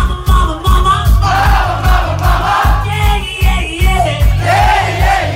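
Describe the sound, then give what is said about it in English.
A loud, dense crowd cheers and yells continuously, voices swelling in waves over a thumping low-end pulse, like a packed concert audience roaring. “Lead singer … channels both … and … all at once, and does the crowd lap it up?”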